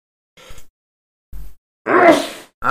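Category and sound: human body sound, loud screaming sneeze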